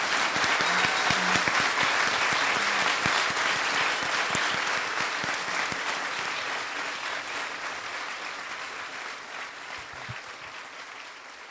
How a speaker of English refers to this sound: Can we give our authors a round of applause?